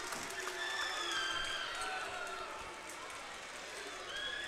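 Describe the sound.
A crowd at a high school basketball game between Port Huron High and Northern cheers after a reverse dunk, a loud, steady roar of many voices that holds for several seconds, with brighter shouts and whistles rising above the dense mass of noise.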